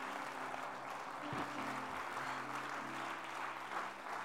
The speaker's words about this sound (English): Don't somebody clap your hands unto the Lord today.